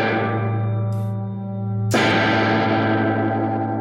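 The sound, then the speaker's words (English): An electric guitar plays through an effects pedal with its two controls turned all the way down and a high reverb level, a sustained distorted chord ringing with heavy, washy reverb, then a fresh strum near the middle that blooms and lingers. No voices. “Okay, so that's with the two controls all the way down. I've got kind of a high reverb level.”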